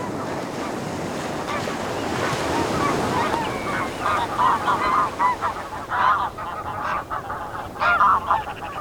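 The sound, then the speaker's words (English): A flock of geese honks repeatedly in overlapping calls at a beach with a lagoon behind the dunes, over a steady roar of surf and wind with no one talking. “And you can see the geese and all sorts of birds coming in there.”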